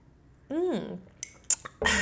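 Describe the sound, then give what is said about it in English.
A brief voiced hum, then a light clink of a mug and a noisy slurp as someone sips coffee. “I'm going to sip on my coffee.”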